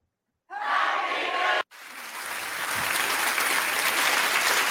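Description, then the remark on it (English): Loud, dense applause from many hands bursts in abruptly, cuts out for an instant, then resumes and carries on steadily to the end, with no talking over it. “And that's when you applauded.”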